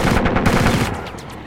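machine gun fire

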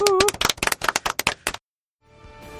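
applause

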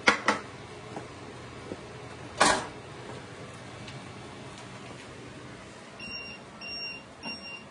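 kitchen timer beeping

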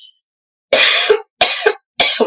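cough

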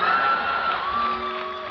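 audience cheering

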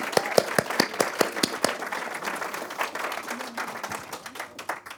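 audience round of applause

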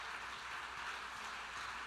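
audience clapping hands

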